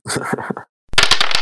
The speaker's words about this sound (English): And then I want a 2d6 roll to see what damage was caused to the vehicle. Snake eyes. Snake eyes would be good.